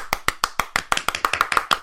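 A short burst of hand clapping, about a dozen sharp, fairly loud claps in a quick, slightly uneven rhythm, with no talking over them.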